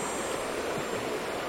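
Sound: flowing river water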